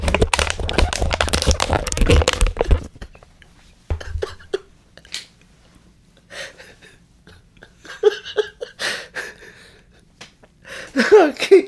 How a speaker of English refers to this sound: Listen to the water bottle being opened. Feel the crunch. Feel the tip of it. A little crunchy on the bottom.